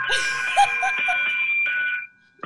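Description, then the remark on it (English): A bell is rung for a donation to MDA, ringing steadily with a bright, sustained metallic tone for about two seconds, then cutting off sharply. Brief voices and light laughter sound faintly beneath the ringing. “Yeah, we're not just ringing this bell for no.”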